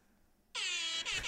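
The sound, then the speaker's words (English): A loud, brassy air horn sound effect bursts in after a moment of quiet, holding steady with a rich harmonic tone before a brief dip and a second short push at the end. “Go around the air horn.”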